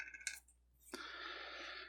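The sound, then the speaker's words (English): Dice are thrown and clatter onto a hard floor: a sharp clack as one hits the floor, a brief pause, then a second impact followed by a sustained rattling roll, fairly quiet, with no voices. “Throwing dice on floor. One hit the floor.”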